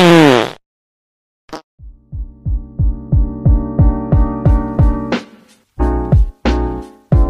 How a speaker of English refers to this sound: Hey Alexa, play fart sound.